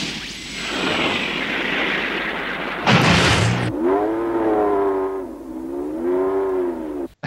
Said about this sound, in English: That was a pretty cool animation there and continues now onward down the road with the car engine kicking in. Kind of sounded more like a motorcycle there. It did.